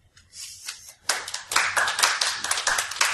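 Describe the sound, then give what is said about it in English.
Scattered audience applause, a few hands clapping softly at first, then picking up into a steady, moderately loud patter of irregular claps with no talking, as the audience votes by applause on whether a claim about a new cancer treatment is the fiction. “All right, so audience participation, and we're going to signify by a round of applause.”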